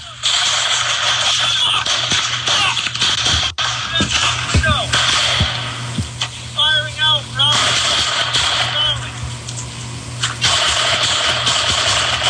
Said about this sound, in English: Listen to that. Holy cow. He's firing at them. They're firing back at him. It is a full barrage.